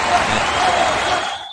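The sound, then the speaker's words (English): A crowd cheers and shouts a person's name in a steady, dense roar of many voices that holds loud for over a second before fading off at the end. “Dude, they're cheering your name.”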